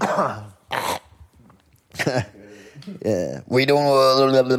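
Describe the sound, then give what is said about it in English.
A person coughs a few times, short harsh bursts separated by pauses, mixed with throaty, strained vocal sounds and no clear speech. “Cough break.”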